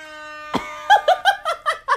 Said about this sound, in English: The original rap air horn. Yes. Okay, play it. This is what I'm talking about. Ready?